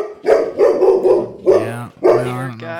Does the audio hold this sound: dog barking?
yes